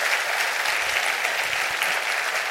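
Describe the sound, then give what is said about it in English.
A church crowd claps hands for receiving the word of the Lord, in steady, dense applause that holds at an even, fairly loud level throughout, a bright crackling wash of many overlapping claps. “Clap your hands if you receive the word of the Lord today.”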